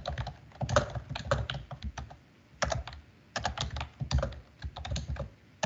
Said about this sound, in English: You got that Windows 98 keyboard, girl.